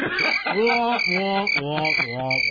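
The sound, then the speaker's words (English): A voice mimics cricket chirping as a sound effect in a run of rhythmic, buzzy, pulsing calls, fairly loud, over a thin steady high tone. “First cricket.”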